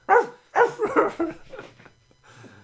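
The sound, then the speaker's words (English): A person's voice imitates a dog barking, giving four or five loud woofs in quick succession that fade into softer, trailing yelps by the end. “Bark like a dog for me.”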